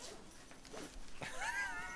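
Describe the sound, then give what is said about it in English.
A dog lets out a short, high-pitched whine that wavers up and down over a low background hiss. “Ooh, forget it. My dog.”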